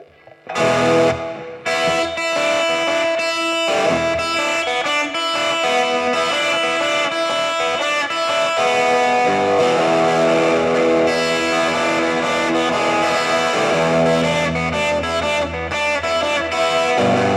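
A song played on a Fleet FM radio show kicks off with a loud, heavily distorted guitar intro: thick, sustained chords that burst in after a brief quiet moment and keep driving steadily, with no singing.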